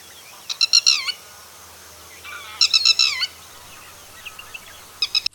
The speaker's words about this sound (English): That's the red wattled lapwing. It's an erect standing bird found near water bodies, open country and cultivation alike. It has a crimson fleshy wattle in front of its eyes, black head, neck and breast, and is white below.